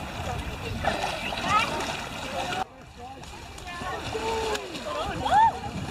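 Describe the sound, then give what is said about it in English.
Water splashes and sloshes steadily for several seconds, fairly loud, with a brief pause partway through, as water pooled inside a full clean room bunny suit spills out; voices can be heard faintly in the background. “Water pooling in the suit like that.”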